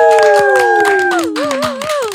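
Quick, steady, loud hand clapping fills the whole stretch as a guest is introduced, while a high voice holds a long, gliding whoop over it that wavers near the end.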